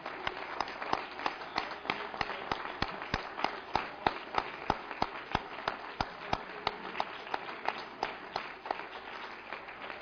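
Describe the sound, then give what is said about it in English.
A crowd claps hands together in steady applause of adoration, many sharp claps blending into a continuous dense patter for about ten seconds, moderately loud, with no one speaking. “Let's give him a hand clap of adoration.”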